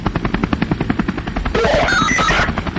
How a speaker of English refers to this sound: Now, the police helicopters were moving over the Royal Museum.